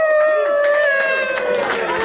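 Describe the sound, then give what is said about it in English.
A loud crowd reaction sound effect: a dense wash of cheering voices over a steady high-pitched tone, holding at full volume for about two seconds. “Now it's that's some crowd reaction.”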